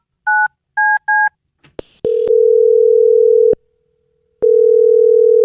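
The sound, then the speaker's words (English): Three quick dual-tone keypad beeps of a phone being dialed to call a woman, then a click and a loud, steady telephone tone that cuts off and returns after a pause. No voices. “Well, we're going to get her on the phone right now and find out if that is the reason, okay?”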